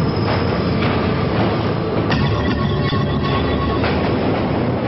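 A subway train rumbles steadily along the rails, a loud continuous roar with faint metallic clatter and brief squeals of wheels, with no voices.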